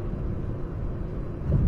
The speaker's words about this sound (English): A little bit of heavy traffic tonight.